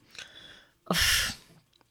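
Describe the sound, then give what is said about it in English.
A single short burp lasting about half a second, bringing up wine: a rough, breathy burst with a low throaty rumble underneath, with no talking around it. “How am I burping up wine?”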